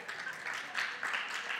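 An audience claps together in a steady, dense wash of many hands, with a few brief swells in loudness and no voices on top.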